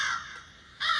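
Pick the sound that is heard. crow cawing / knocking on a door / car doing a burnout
crow cawing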